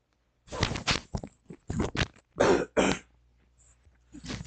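cough and throat clearing

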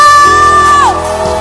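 audience screaming and cheering

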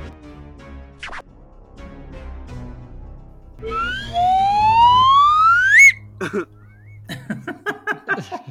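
whistle being blown

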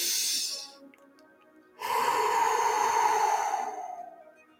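deep audible breathing

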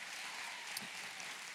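audience applauding

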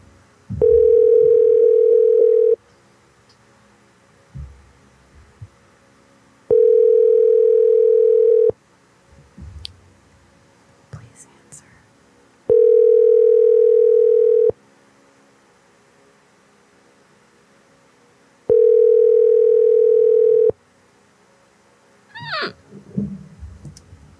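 phone call ringing tone

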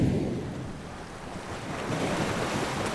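ocean waves

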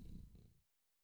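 cat purring

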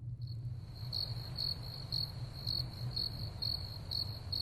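crickets chirping

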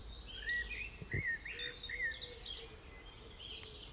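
robin singing

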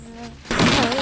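buzzing fly

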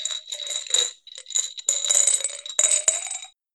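dice rattling

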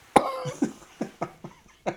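cough into the microphone

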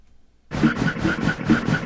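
train sound effect

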